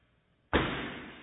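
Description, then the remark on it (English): After a moment of quiet, a single heavy thud hits a wooden floor as Corbin, a pet, vaults down during an escape, a sudden loud impact followed by a rumbling, slowly fading resonance through a pier and beam house. “Essentially, as he makes the vault down onto the wood floors, and we have a pier and beam house, so it just shatters the entire house.”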